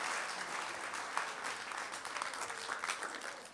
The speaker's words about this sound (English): Give the Lord a big hand. Hallelujah.